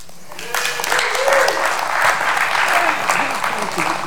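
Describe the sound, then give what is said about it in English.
An audience at a church service breaks into steady, sustained applause for an elder. The clapping swells after a brief pause and carries on for several seconds, with scattered voices calling out among it. “Let's give a good hand clap to the one of the two greatest elders on earth.”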